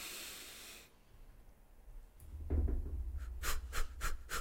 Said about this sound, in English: The less serious version, I started doing breathing exercise. Okay. Yeah, yeah. So I would go.